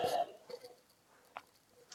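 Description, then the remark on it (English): A quick sip of water: a brief slurping draw at the start, then a few faint mouth and swallowing clicks in near silence, with no talking. “Take a little sip of water.”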